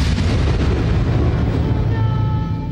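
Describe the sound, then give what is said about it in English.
A loud, sustained thunder rumble with deep low-end roar that rolls on steadily without a break, fading slightly at the end; no voices are heard. “Storm coming, Mr. Wayne.”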